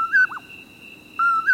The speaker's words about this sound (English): When it's summer in the Southwest, the call of a common Poorwill greets the moonrise.